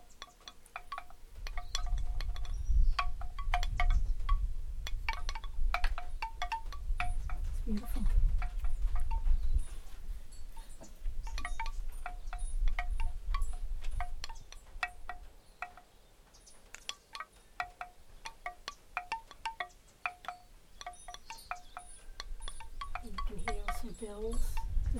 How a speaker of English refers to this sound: It's not real windy, but it's a nice breeze blowing through. So you can hear a lot of these wind chimes. But yeah, beautiful. And they're really nice and just light ones, which I like. Sometimes they can be too loud.